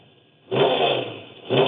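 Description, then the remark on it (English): A flat gray Raptor off-road race truck, number 98, roars up in a loud rev, eases off briefly, then surges again in a second burst, with no voices. “It's a Raptor truck.”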